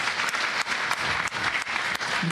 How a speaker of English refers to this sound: Let's give Coach Riley a big round of applause for his creativity.